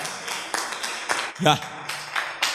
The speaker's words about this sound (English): The Christians who understand it are clapping.